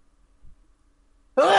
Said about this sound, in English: About to sneeze.